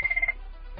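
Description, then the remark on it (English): A short electronic phone ring at a workplace, a quick high-pitched trill of several rapid pulses lasting a fraction of a second before cutting off into quiet background noise. “My phone just rang.”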